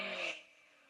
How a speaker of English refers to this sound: It sounds amazing. That 4.4 liter V8.